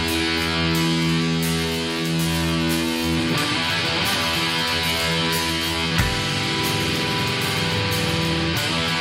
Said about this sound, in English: the way that the cymbals sound at the very beginning